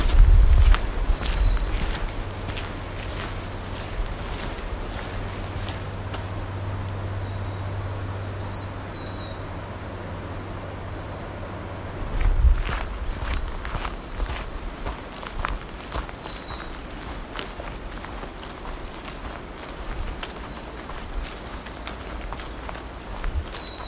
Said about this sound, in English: Okay, this strange black-throated green is still singing.